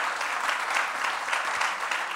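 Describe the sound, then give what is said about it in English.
Steady crowd applause for Adam Ray at a New York show fills the whole stretch, a dense, even crackle of many hands clapping at once with no break and no voices standing out above it. “Let's hear it for Adam Ray, Thank everybody.”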